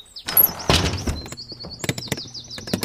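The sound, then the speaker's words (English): A door slams shut and locks with one heavy, booming thud, followed by a few sharper knocks and rattles while high, warbling chirps and whistles continue over the top. “Hey, what happened to the door? Oh, no. Sometimes it slams and I can't unlock it.”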